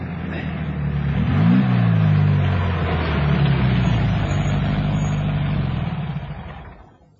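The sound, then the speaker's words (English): A car engine rumbles, briefly revving before settling into a steady idle as the car is stopped near some trees, then cuts out and falls quiet near the end. No voices are heard. “Stop the car near those trees ahead.”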